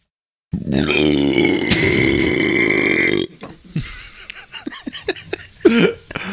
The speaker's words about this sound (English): You go all out for your burps.